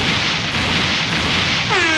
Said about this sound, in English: Hold up now. Give him a little bit of explosion.